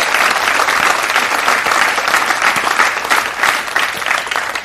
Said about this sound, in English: Can we just give God just a huge hand clap of praise this morning and thank him? Thank you, Lord.